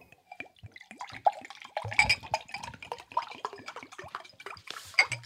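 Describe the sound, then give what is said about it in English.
Water runs and drips steadily, with scattered bright splashes and faint clinks like it's pouring into a sink. Fairly clear, no voices. “All right, that water sounded nice.”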